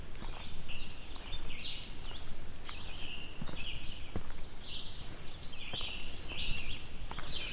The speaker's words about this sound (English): As you can hear right now, I'm surrounded by birds. Red-eyed vireos, scarlet tanagers here as well. And probably, yeah, there's a cicada as well too